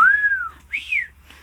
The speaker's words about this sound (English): I was going to say you start whistling again.